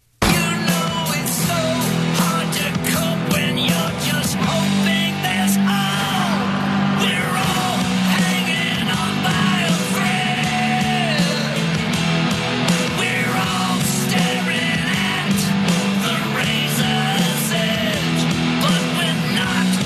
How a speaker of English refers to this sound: I am going to play those for you. I love new music. Here is the first one. This is inspired by COVID-19.